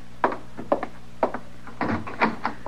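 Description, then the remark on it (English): A door rattles in several short, uneven bursts, clattering against its frame as somebody works it from the other side, not the wind, with no talking. “No, sir, Mr. Dillon, that ain't the wind. Is somebody working the door that way?”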